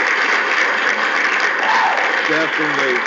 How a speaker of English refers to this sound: So let me go ahead and give them that round of applause up here.